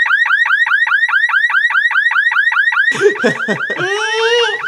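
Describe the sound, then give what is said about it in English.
A loud car alarm blares, cycling through a rapid repeating whoop before switching to a harsher warbling siren pattern, with no talking over it. “The car alarm starts blaring.”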